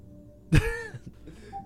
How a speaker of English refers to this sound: So I continued with my key, but suddenly I heard another noise that freaked me out. A cough.